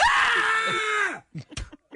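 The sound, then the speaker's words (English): A loud, sustained scream rings out for about a second, layered as though several voices cry out together, then trails off into a few short, sharp vocal bursts. “Then why were they all singing? They were screaming.”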